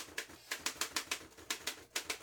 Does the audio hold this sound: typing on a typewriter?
yes